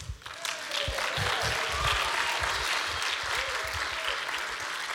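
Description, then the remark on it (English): An audience claps steadily, the dense applause holding an even, loud level throughout the whole stretch with a faint hum of crowd voices underneath. “Keep clapping as I say the next one.”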